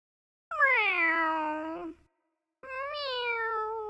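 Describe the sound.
A person imitates a cat with two long, drawn-out meows, loud, separated by a brief pause, with no other talking.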